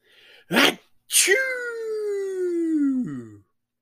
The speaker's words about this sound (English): Achoo! Kelvin's dad sneezes